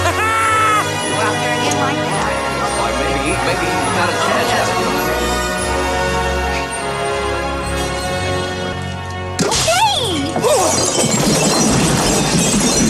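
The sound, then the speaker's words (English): Lawn ornaments being smashed and torn up by a man: loud crashing and shattering bursts break out near the end, over a dense, continuous wash of music and vocal sounds. “And what you'll hear is him tearing up the lawn ornaments in his anger over the lights not working.”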